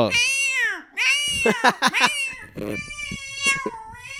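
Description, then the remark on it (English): A person loudly imitates a screaming cat, letting out drawn-out, wavering yowls that swoop up and down in pitch, broken by a few short choppy bursts. “That's like the first cat buck chandelier scream.”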